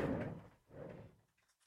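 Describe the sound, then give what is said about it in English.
A door is unlocked and swung open: two dull, low thudding movements in quick succession, soft, followed by a brief quiet. No one speaks. “So it was just a knock at the door. Yeah. Do you want to unlock it?”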